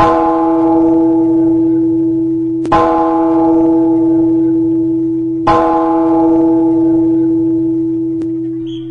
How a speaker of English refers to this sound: Dawgs win big over Ole Miss in Athens on homecoming. We're one win away from Atlanta. Ring that beautiful chapel bell, baby.